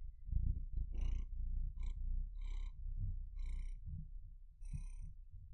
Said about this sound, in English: He's not really purring yet. Yeah, he is. I can hear it.